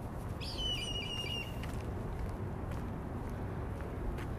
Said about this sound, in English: Oh, look at that hawk. Did y'all hear it in the background? Wow.